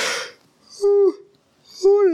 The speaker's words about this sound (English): Okay, sorry. That was a bad spot for a yawn.